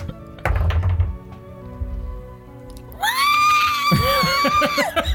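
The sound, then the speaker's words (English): A person lets out a loud, shrill vocal screech imitating a bird or creature to get someone's attention, held for about two seconds with a wavering pitch, following a few dull thumps. “I screech.”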